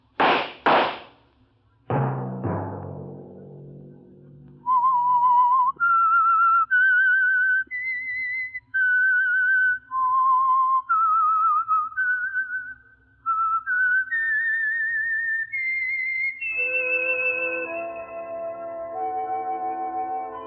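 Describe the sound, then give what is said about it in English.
A few heavy thumps open, then a lone whistler carries a slow, wandering melody of clear sustained notes, rising and falling before settling onto a held tone with fuller accompaniment underneath: the whistled theme of the Signal Oil radio program The Whistler. “Let that whistle be your signal for the Signal Oil program, The Whistler, each Sunday night at this same time.”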